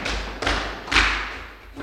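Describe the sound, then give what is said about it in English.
A crowd stomps their feet in a rumbling burst of heavy, overlapping thuds, swelling in a few loud waves with low booming thumps and no voices. “Can I have a stomp for that?”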